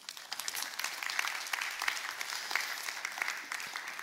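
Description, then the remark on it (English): A crowd applauds steadily to welcome a woman invited up to join the speaker, many overlapping hand claps forming a dense, even wash of sound that holds at a moderate level for the full few seconds without any voices. “Can we clap for Carrie?”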